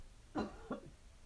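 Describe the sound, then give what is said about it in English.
Two quick, harsh coughs in succession, the first stronger and the second slightly softer, with a quiet background. “I'm taking cough medicine.”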